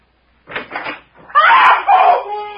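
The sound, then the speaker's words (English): A bedroom door bangs shut twice in quick succession, fairly loud, followed by a long, loud, harsh shrieking sound. “And it slammed the door right in my face and locked it.”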